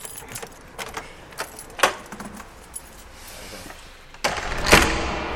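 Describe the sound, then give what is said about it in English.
A huge bunch of keys jangles in short metallic bursts, followed near the end by a heavier clunk and rush of noise as a big old door at Rosenborg Castle in Denmark swings open. “has a huge bunch of keys that opens every single door. It's a big old door, that.”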